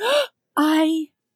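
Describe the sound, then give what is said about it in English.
A person voices two quick, sharp gasps, fairly loud: a short breathy intake, a brief pause, then a longer voiced gasp that trails off into silence. “I was like, gasped.”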